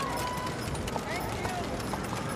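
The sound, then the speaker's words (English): Slow, spaced clip-clop of horses' hooves with the low rumble of carriage wheels, passing mourners in masks standing several deep along a sidewalk within view of a bridge, amid a steady murmur of crowd noise and voices. “You hear the slow footsteps of the horses and the slow churn of the carriage wheels.”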